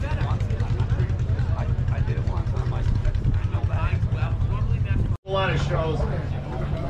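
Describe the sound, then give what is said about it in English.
Old tractor engines run with a steady, low, continuous rumble where a tractor pull is being set up, while voices talk over the droning; the sound briefly drops out near the end before resuming. “They're still setting up for the tractor pull and we need to leave, but here are some old tractors before we get out of this area.”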